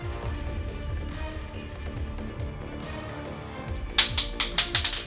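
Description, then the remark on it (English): Dice hit a hard floor near the end, a sharp clack followed by five or six quick bouncing taps that come closer together as they settle, over a low steady background hum. “Oh shit, I dropped the dice on the floor.”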